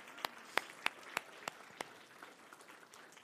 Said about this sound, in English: Church, can we applaud the people that are helping disciple?